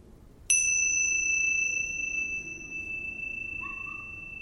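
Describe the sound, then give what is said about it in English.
A single meditation bell is struck once to mark a breath meditation practice, ringing out clear and bright, then its pure tone lingers and slowly fades over several seconds. “I'll begin and end the meditation with a bell.”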